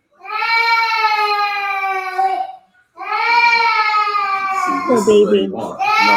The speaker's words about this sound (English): I put the toy together. He's still crying, right? Like, you gonna cry yourself to sleep in a minute.